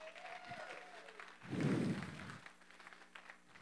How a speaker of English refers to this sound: You could say, give him some hand clap. Come on.